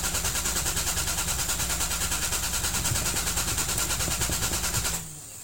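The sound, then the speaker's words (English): A car engine cranks over and over in a fast, steady chugging rhythm for about five seconds without catching, then abruptly cuts off, leaving a low hum. “This car won't start.”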